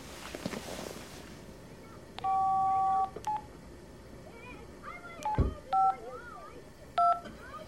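Telephone keypad tones dial a number on speakerphone: one long held beep, then several short clipped beeps at uneven intervals, clear over a low, murky background hum.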